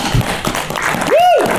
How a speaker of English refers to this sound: Before we start, everyone, give yourselves a round of applause. Thank you so much.